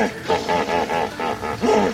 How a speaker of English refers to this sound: We're listening to the sounds of hippos, and while these calls are impressive, even more remarkable are the sounds they make that you can't hear.